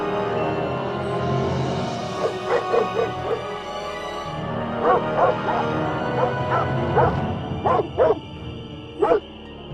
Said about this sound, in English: The four ghost dogs attack, hence the name, Ghost Dogs of Moonlight. All right, as legend says, the dogs come back to haunt and scare away anybody who tries to live in the house.